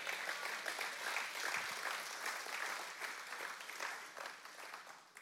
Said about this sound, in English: And I love that you're clapping because that means that you're going to do that too, right?